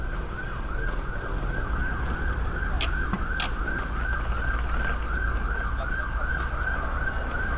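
vehicle, emergency vehicle siren

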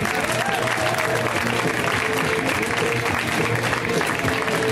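crowd, comedy club audience applause

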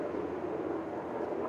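vehicle, helicopter flying overhead

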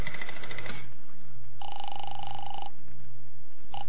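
household object, telephone dialing and ringing

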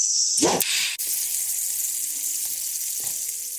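sound effect, sizzling sound effect

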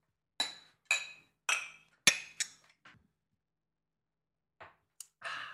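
household object, beer glasses clinking

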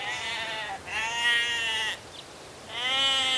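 animal, sheep bleating

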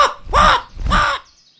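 bird, bird cawing

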